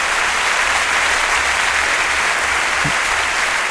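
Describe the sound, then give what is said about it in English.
Sustained, dense applause from a large audience at the end of a live-recorded music track, a steady wash of many hands clapping at once, loud and continuous throughout with no talking over it. “There was a thunder of applause at the end of the track.”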